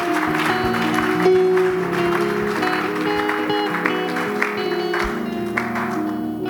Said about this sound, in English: Celebrate God with another clap of it.